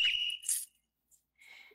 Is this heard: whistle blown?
yes